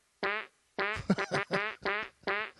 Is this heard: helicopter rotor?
no